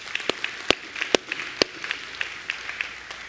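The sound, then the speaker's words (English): Congregation applause at a Life Church morning service: a scattered crowd clapping steadily for a few seconds, with a few sharper, louder claps standing out over a dense patter of softer ones. “Could we give a big round of applause to our...”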